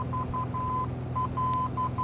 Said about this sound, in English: It's like we're in a boat all of a sudden. What is that, the engine room? Sounds like a distress signal to me,